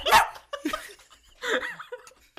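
A dog, upset by people yelling, lets out a few loud, agitated barks in an irregular burst, with whiny, strained tones between them and no one talking.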